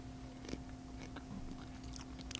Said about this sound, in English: I'll give it a 3, especially on this little pickle chip. It didn't have a snap, but it has a really good crunch.